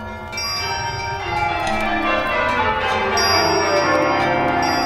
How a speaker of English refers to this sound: The bells ceased as they had begun, together.